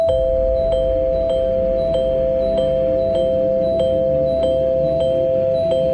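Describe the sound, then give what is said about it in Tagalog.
An electric doorbell at the green gate of an old house buzzes in a steady, unbroken tone while sharp clicks repeat at a quick, regular pace as a boy presses its red button over and over. Nobody speaks. “Walang pag-aatubili ay sunod-sunod na pinindot ni Alvin ang doorbell.”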